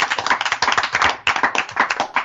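A group of students clap steadily, dense overlapping claps forming a continuous patter of applause with no talking.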